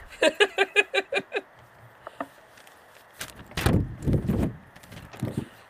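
A quick run of about eight loud thumps as paper hits a microphone, followed by a few scattered knocks and a louder muffled rustling burst.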